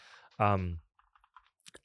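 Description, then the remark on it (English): A brief, loud vocal sound, then a scattering of light, quick keyboard taps clicking irregularly as someone types a name into a web search, about eight soft keystrokes spread over a second. “I'm actively trying to type Julian Araujo into Google and it's just not working”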